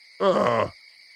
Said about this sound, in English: Oh, I love the crickets. Oh, crickets get me hot.